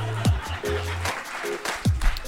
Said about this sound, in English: Applause. Laughter, some more applause.